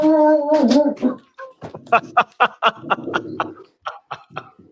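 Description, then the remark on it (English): The neighbor's dog barks: a drawn-out, whining howl first, then a rapid run of sharp, loud barks in quick succession. “Now we got the neighbor dog going.”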